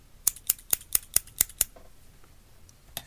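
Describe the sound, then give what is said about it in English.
Scissors snip seven times in quick, even succession, each cut a crisp metallic click, then it goes quiet apart from one faint tick at the end. “I could play with scissors instead.”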